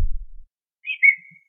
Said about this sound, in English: What does that whistle mean?